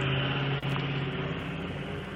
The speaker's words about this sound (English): Whoa. I just had a super loud truck drive by.